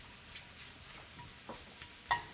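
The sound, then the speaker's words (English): Shiitake mushrooms fry in oil and butter with a steady, crackling sizzle, broken by a few sharper pops and a brief clatter near the end. No one speaks. “Bathing in oil and butter, right?”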